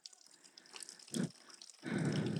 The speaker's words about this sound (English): But actually what happens is that's better. There we go. When we start to speak the reality of who we are, the fresh water gets put in. And as the fresh water gets put in, the dirty water starts to spill out